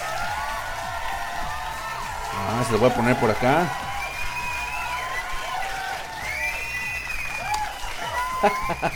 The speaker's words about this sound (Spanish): Y justamente, pues vamos a homenajear a la belleza femenina con una hermosísima mujer que se llama Noelle Easton. Un pinche aplauso.